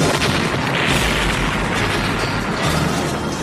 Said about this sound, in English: Guys, they're setting off bombs.